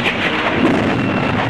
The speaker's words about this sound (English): At the sound of that magic word, a bolt of lightning flashes out of the night sky.